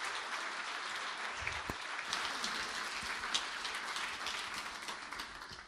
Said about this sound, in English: If you want to give these guys a round of applause, and welcome them up.